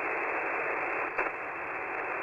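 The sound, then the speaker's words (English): Steady band-limited static hiss of radio interference, heard on a YouTube recording of the UB-76 radio station, fills the whole clip at an even level, with a brief crackling burst about halfway through. No voices. “Okay, there was the interference.”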